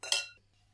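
Wine glasses clink together in a toast, two quick bright strikes close together that ring briefly and fade within a fraction of a second, with no talking.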